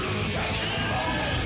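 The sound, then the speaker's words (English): Sustained, strained yelling from an original Dragon Ball Z cartoon video playing on YouTube, loud and continuous for over a second, with harmonic vocal bands over a dense, noisy backdrop. “Lots of yelling.”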